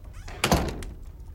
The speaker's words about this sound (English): The slave boys run out of the room. The last one shuts the door.